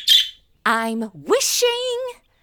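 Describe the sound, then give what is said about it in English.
A bird calls by freshly scrubbed steps in a walled courtyard with a wishing well, in a few short, loud bursts: a breathy hiss, then warbling, squawky chirps that slide up and hold briefly before stopping. “Don't you dare poop on my clean steps, bird!”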